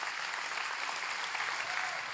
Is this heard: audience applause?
yes